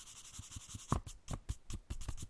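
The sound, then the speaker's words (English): A makeup brush quickly wipes back and forth across paper to tidy it up, making soft swishing and scratchy strokes in a steady rhythm of about ten sweeps, with no talking. “Just doing that, the action of wiping the paper with the makeup brush is really fun. And it sounds really nice as well.”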